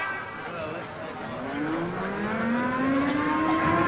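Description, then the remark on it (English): A civil defense alert siren in a town starts to wind up, its tone climbing slowly in pitch and growing louder over a steady, broad rumbling background noise. “There goes the alert siren.”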